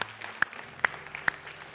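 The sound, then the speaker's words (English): A church audience applauds, giving a hand clap for the Lord after a prayer, with a steady patter of hand claps, while a few sharp, louder claps ring out at an even rhythm above the rest. No one speaks. “Hey, can we just give the Lord a hand clap for that?”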